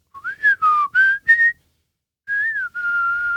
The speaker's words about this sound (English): I don't know what the whistling means. Can you explain in words, English?